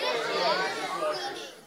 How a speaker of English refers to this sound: All right, just yell at me on the count of three. What is your least favorite chore? One, two, three.